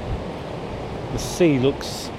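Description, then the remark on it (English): A steady, rushing roar of wind and rough, furious sea surf in a cold tempest fills the whole recording, with a brief human voice sounding out near the middle over the noise. “A proper tempest.”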